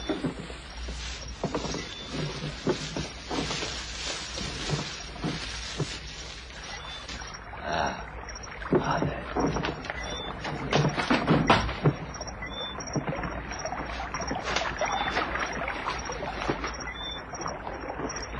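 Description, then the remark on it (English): A man leaving in a boat dips and splashes the oars rhythmically in water, a steady rowing pattern with watery slaps and drips, moderately loud, with no voices. “You'll never hear us swimming against the splash of his oars.”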